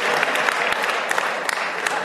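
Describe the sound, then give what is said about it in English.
An audience claps together in a dense, steady burst of applause, a bright crackling wash of many hands with no pauses, fairly loud throughout. “Now y'all rethinking that clap. Like, I was clapping until he said all that.”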